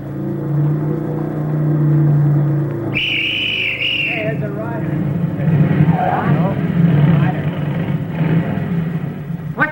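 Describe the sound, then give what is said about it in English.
A motorcycle approaching along a road drones steadily for a few seconds, then a brief high whistling tone cuts in, followed by rumbling engine noise mixed with indistinct voices. “At 10:18 on the third mile of the road, the platoon heard a motorcycle coming from the direction in which they had come.”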